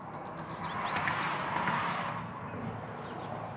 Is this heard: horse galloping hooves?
no